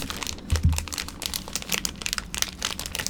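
A plastic LEGO minifigure blind bag crinkling and tearing open, a fast run of sharp rustles and crackles with a brief low thump early on, continuing steadily without speech. The bag turns out to hold a Coyote figure.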